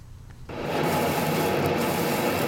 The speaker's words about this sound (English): A prime cut of marbled beef sizzles as it hits the grill and softens. The beef is fired on both sides and then draped over a piece of red shrimp sushi, so the rice absorbs its juices.